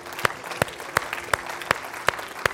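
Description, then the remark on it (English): An audience claps together for the Lord as a clap offering during worship, in a steady, even beat, about seven sharp claps in under three seconds, over a low background murmur. “And anybody that's thankful, give the Lord a clap and a shout offering right now.”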